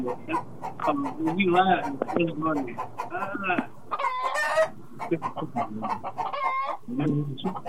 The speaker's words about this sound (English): There's a bunch of chickens in here.